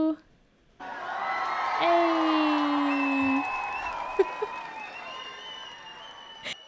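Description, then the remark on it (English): A round of crowd applause with whoops and cheering voices rises suddenly and fills about six seconds, loud and dense, before cutting off; a single spoken word is heard briefly. “And so here's a quick round of applause for you.”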